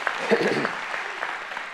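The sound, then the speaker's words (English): A church audience gives the Lord a hand clap in a steady, dense patter that fills the room, with a voice briefly rising over it near the start. “If you believe that, give the Lord a hand clap and say, yeah, amen.”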